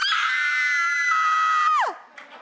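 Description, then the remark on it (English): An adult man lets out one loud, sustained scream, demonstrating how to scream for a young boy. The scream holds steady for nearly two seconds, then breaks off with a sharp downward slide in pitch, leaving only faint room noise. “You know what? I'm just going to do one for you. Ready? One, two, three.”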